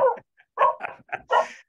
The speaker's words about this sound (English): Is that your friend in the background, the dog? Sorry, that's not my friend. I'm in the Maloka. This is the place that we're building right now. These are local. These are our dogs, but they won't stop.